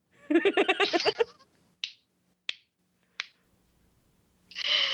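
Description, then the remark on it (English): A burst of laughter, then three slow, evenly spaced sharp claps, each ringing out alone before a rush of noise at the end. “You can't laugh and then do a slow clap.”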